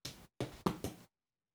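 A female cat clawing at a chair, heard as four quick scratchy, thumping bursts in an uneven rhythm, fairly quiet and with no one talking over them.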